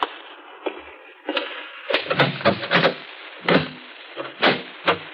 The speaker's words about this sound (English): There's a discreet knock on the door at the front of the shop. Oh. He gets up and walks through the store to the door.